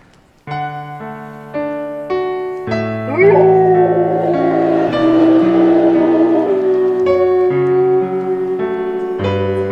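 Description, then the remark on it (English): A golden retriever dog howls in a long, wavering, rising note over steady piano chords, its voice loud for several seconds before the piano carries on alone. “I've done this show a long time, and I always said if we could find a dog that could sing, that would be everything to me.”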